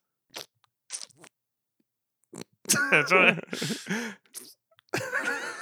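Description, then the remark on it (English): A voice imitates the squishy, slimy sound of green slime on trees: a couple of short wet clicks, then a longer run of gurgling, sloppy mouth noises with breathy bursts, moderately loud and without words. “I'm trying to make like a squishy sound.”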